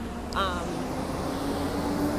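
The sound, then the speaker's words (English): A heavy truck rumbles past with a loud, steady low engine drone and a brief high, whining squeal near the start, the roar holding strong throughout. “Wait for this truck.”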